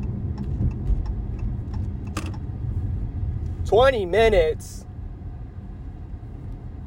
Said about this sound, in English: I don't have time to be sitting in traffic.